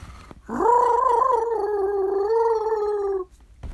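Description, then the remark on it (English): A person imitates a turkey gobble with one long, throaty, warbling call lasting nearly three seconds, steady and fairly loud, with a faint wobble in pitch and no talking around it. “I used to be able to sound like a turkey.”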